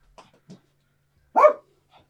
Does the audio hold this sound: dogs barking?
yes